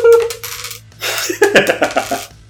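Dice clatter across a hard tabletop, loud, a ringing spin at first, then a quick run of bouncing clicks that tumble and settle within a couple of seconds, landing on the maximum roll.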